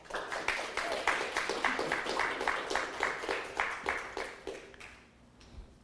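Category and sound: crowd, audience applause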